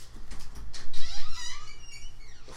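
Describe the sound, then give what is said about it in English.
A door is swung open by a person who walks over to it, with a drawn-out, squeaky creak of its hinges, fairly loud, with a few faint clicks and rustles around it and no voices. “You're supposed to hit it, not open it.”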